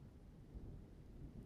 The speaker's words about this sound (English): Oh. Holy shit, it's pouring outside.